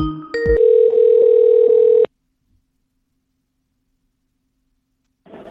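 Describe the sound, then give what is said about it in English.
A short burst of electronic Skype call-connect tones gives way to a steady, loud dial tone lasting about a second and a half, then cuts off into silence before a brief muffled noise at the end. “Yeah, and there you go, the simplest fucking operation, a phone call, and it turns into this.”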